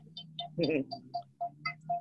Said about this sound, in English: Somebody's got a bike bell going.